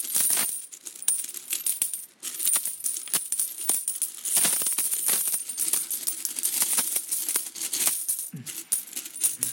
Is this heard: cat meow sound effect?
no